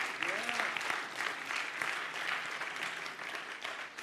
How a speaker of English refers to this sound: Amen? Hallelujah. Give God a strong hand clap for that.